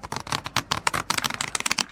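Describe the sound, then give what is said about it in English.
A deck of cards being riffle shuffled, split into two roughly equal packets held with the thumbs against the corners and riffled together: a quick, dense flutter of crisp papery clicks running steadily for a couple of seconds, clear with no voices. “Somebody will take a deck, they'll split the deck into two packets that are roughly equal, and then they'll hold the two packets with their thumbs against the corners and riffle the cards together.”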